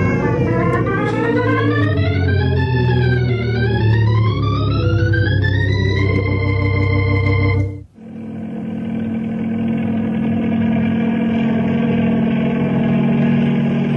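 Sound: helicopter flying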